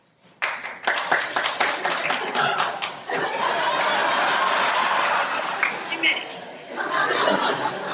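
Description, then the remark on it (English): An audience at a stand-up comedy show bursts into applause when asked who knows the comedian only from Chelsea Lately, sharp scattered claps quickly swelling into a dense, steady roar of clapping mixed with cheers and laughter that holds loud for several seconds. “People that just applauded about the Chelsea Lately, have you ever seen me do stand-up or known anything else about me?”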